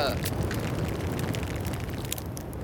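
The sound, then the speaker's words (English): A fire set in a basement, with jicama burning, crackles loudly and steadily, a dense, continuous hiss peppered with sharp pops and snaps that keep an even intensity throughout. “It's really crackling. It's getting hot in here, and I am inhaling a lot of jicama fumes.”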